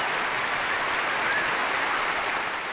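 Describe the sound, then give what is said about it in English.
A steady burst of crowd applause, dense and even clapping at a constant loudness for a few seconds, played as a canned sound effect from a soundboard applause button with no voices over it. “I'm gonna play the applause button anyway.”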